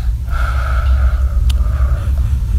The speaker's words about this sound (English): Maybe we'll take some deep breaths again. No, I just want one deep breath.